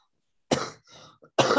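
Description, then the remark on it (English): Two loud, explosive sneezes, the second following about a second after the first, with a brief breathy gasp in between and no talking. “Bless you.”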